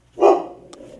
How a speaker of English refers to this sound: That's Wishbone, everybody. My dog, everybody. For everybody that's keeping up with the stingers, they'll be glad to hear Wishbone barking in the background. In the actual episode. Yep. He's barking at a squirrel that's eating a pumpkin